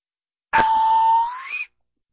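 A single toy slide whistle note, holding a steady mid pitch for about a second before gliding sharply upward and cutting off. Bright and breathy with a sharp attack, heard alone without speech.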